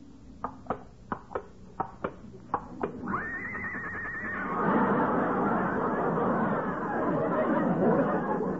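A series of sharp, evenly spaced clops leads into a loud, high whinny from Lillian, a horse brought out as the model for an art class, which gives way to a swell of crowd chatter and laughter that carries on to the end.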